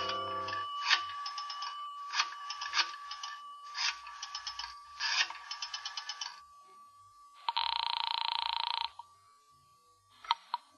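A call placed from a phone booth at the rear of a lobby rings over the line in four rapid, trilling bursts, then a steady buzzing tone sounds for about a second before a sharp click. No one speaks.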